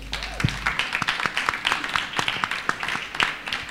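An audience applauds with many overlapping hand claps, a dense, steady crackle of bright percussive hits sustained throughout at moderate loudness, with no talking over it.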